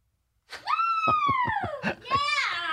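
A loud, high-pitched scream rises and holds for over a second, bends downward, then breaks into a second shrill shriek, with choppy, laugh-like bursts running underneath, intense.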